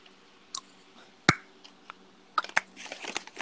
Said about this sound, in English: we should teach him how to mouth pop so I don't have to hear tongue clicking it like this.